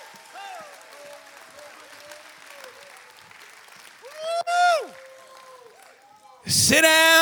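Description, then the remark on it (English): A crowd claps and shouts in praise to God throughout, with voices shouting over the steady applause. The sound swells with loud cries near the middle and erupts into a burst of loud shouting at the end. “Shout when you don't feel like shouting. Clap your hands when they got calluses on them.”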